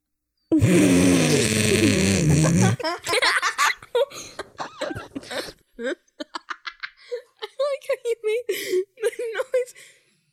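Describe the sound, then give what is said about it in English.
A child imitates snoring, making a loud, raspy, drawn-out noise with their voice for about two seconds, then breaks into quick bursts of talking and giggling. “You sound like Dad when he's snoring at night.”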